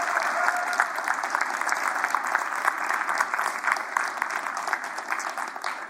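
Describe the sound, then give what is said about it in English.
A steady wash of clapping from many people at a church service, applauding the choir, dense and even throughout, with dozens of overlapping hand claps blending into a continuous roar of applause and no voices standing out. “Can we just give them another round of applause?”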